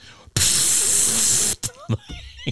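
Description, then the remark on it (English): A long, loud hiss of Lysol aerosol disinfectant spray lasts over a second, bright and steady across the highs. Two short, sharp spritzes follow, with faint voice-like sounds between them. “And the door shuts, boom, and the Lysol comes out.”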